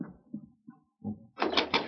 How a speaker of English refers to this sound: Perhaps that is... I will open the door.